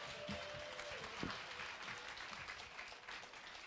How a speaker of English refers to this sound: Come on up. Let's hear a round of applause for these amazing kids.